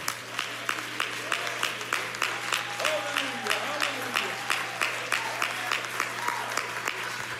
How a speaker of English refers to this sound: Why don't you clap your hands and thank God for that for a moment?